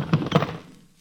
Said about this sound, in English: We are all looking at Tobias Tweeney, who falls off his chair and lands on the floor, the 12 guns sliding every which way on the floor.